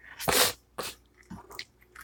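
A single loud, sharp sneeze bursts out, followed by a softer breathy exhale and a few faint sniffs. No one speaks.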